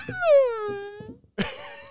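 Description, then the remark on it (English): A person vocally imitates a whale call: a long, high, wavering moan that slides downward in pitch, followed by a burst of laughter and talking. “I can speak whale.”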